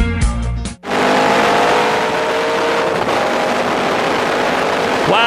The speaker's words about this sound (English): Wow, we are back. I love the sound of that Cobra. I think, I'm not sure where I got that sound effect from. That wasn't one I took from a racetrack or not.